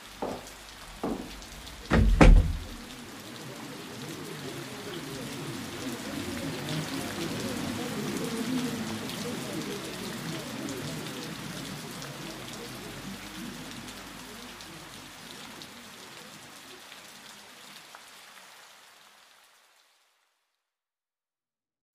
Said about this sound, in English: Sorry, do you want to come in? It's raining and all.